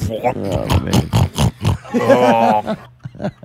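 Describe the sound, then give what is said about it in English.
A person imitates a pig eating slop, making a run of loud snorting grunts that swell into a longer, drawn-out guttural oink before trailing off into a few short snorts. “Like a pig in the slop.”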